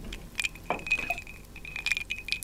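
Glasses clink together in a toast, a bright ringing tone that lingers and sounds again, with light clattering and handling noises and no talking.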